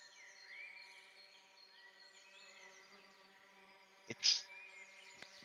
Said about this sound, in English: Birds continue. Chirping.